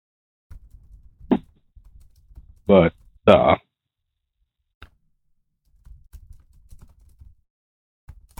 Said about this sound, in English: But, Sorry, I'm just typing because someone just messaged me about Ludwig.